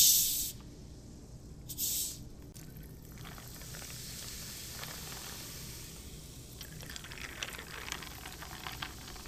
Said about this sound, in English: Okay. I'll pour over 2 iced glasses. We're going to add club soda.